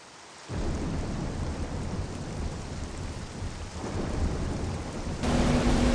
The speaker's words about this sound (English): It's a dark and stormy night.